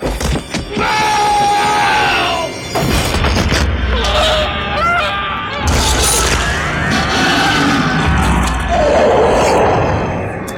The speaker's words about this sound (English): Is that a lion? A lion roar. Maybe that was just in the mix when they were creating the sound effects. It sounds like a marble moving around a silver drum at the end there. But there was like a rock. It was like the MGM lion happened there.